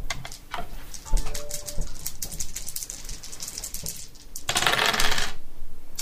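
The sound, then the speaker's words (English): Four dice clatter across a hard table in a quick run of sharp clicks and rattles, ending with a louder burst of tumbling. No voices are heard. “Dice. Sadly, only four now.”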